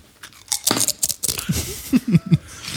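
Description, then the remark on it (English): Someone crunches an After Midnight Taco Chip: a run of sharp, crackly bites in an uneven rhythm, followed by a few heavier, muffled chewing thumps, with no talking. “So vivid, that crunch.”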